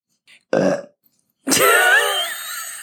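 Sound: loud burp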